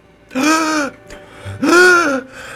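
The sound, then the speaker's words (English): A person gasps for air twice, each a loud, drawn-out voiced breath with a strained rising tone, separated by a short pause. It sounds acted, like a deliberate imitation. “It's I'm gasping for air.”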